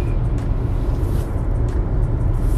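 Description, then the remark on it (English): A car cruising along a highway on a two-hour trip: a steady, heavy low rumble of engine and road noise with a faint airy hiss above, unbroken and even in loudness throughout, with no voices. “like I said, I'm driving down this highway, doing a 2-hour trip.”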